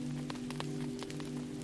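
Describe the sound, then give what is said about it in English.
Steady rain patters down with scattered, distinct drops tapping, layered over a constant low droning hum; no one speaks. “You close your eyes and cherish the feeling of the raindrops landing on your forehead, your lashes, and your lips.”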